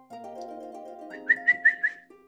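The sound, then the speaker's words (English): A man whistles a quick run of four bright, sharp notes, clear, over a low, steady humming tone that sounds beneath them and fades out afterward. “And he gives a whistle.”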